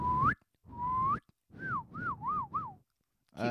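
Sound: whistled bird call imitation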